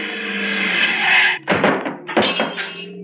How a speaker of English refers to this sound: We knocked him 100 feet, Slater. But the front of the car's all smashed.